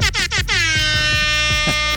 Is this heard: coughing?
no